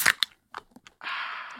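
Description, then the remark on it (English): Sharp metallic clicks and a crack as a beer is opened into a microphone, followed by a steady, loud fizzing hiss of escaping carbonation that holds for over half a second. “We both have a beer here. Let's open it on the mic.”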